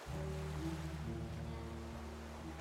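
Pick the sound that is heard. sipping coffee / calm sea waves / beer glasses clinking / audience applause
calm sea waves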